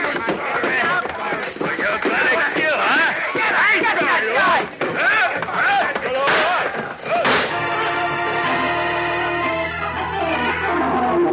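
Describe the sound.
A chaotic brawl in which a man smashes another to the floor with a chair while a gunman's shots go wildly into the walls: crashing impacts and sharp, rapid bangs like gunshots, with shouting voices mixed in, before a loud sustained musical chord takes over near the end.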